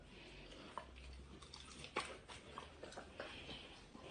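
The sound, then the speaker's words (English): A dog chews food with soft, irregular crunches and wet clicks scattered over a few seconds against a quiet hush. No one speaks. “Okay, tuck in, eat.”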